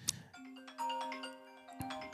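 A phone ringtone plays: a steady, electronic melodic tone with held notes, moderately quiet, with a couple of sharp clicks near the start and again partway through, and no talking.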